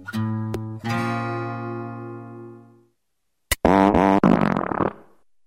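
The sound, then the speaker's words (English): Two loud farts with no talking: a long, steady, buzzy one fading out after about three seconds, then a short pause and a quicker, sputtering, wobbly one. “Farts are funny.”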